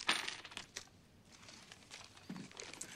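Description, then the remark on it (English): Metallic clinks and jingles of coins from a coin collection (nickels, quarters and a penny) being handled, with a sharp chime at the start and scattered light rattles and clicks throughout, no voices. “Show me the coins.”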